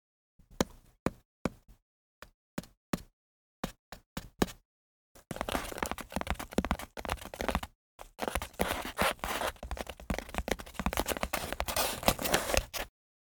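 In a living room, a cardboard box is tapped with a dozen or so sharp, hollow knocks, then rubbed and scraped in a long, loud stretch of dense rustling and scratching, with one brief pause.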